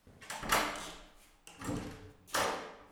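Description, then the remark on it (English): A door to a chapel being opened with three drawn-out, grinding scrapes in succession, each swelling and fading, fairly loud, with no voices. “The chapel should be to the left. That door.”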